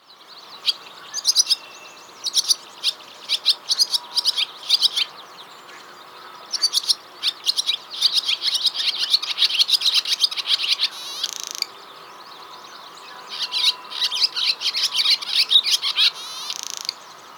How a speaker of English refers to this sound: The most common call is a cheep, similar to a house finch, but rougher. So one more time, here's the barn swallow.